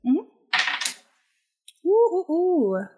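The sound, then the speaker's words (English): A short clattering rattle like dice tumbling across a table as a gadget roll is made, followed by a single sharp click as they settle, with voices speaking before and after. “Ulez, real quick, make a gadget roll”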